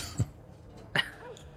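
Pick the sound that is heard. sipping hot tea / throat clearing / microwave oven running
throat clearing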